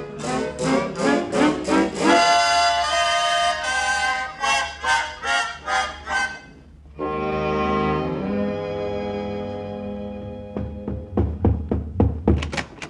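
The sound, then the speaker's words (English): Rapid bursts of heavy pounding on a floor, a dozen or so thumps at a time, separated by a sustained, ringing tonal passage before the pounding resumes. “Oh, well, I heard you pounding on the floor.”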